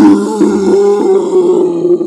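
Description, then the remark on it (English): A voice imitates the roar of a Balrog stomping around: one sustained, low, gravelly growl lasting about two seconds, loud and steady with a rough, buzzing texture and no speech. “And the Balrog's just stomping around going...”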